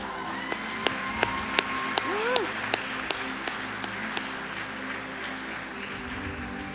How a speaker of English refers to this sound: Go ahead and give them a clap.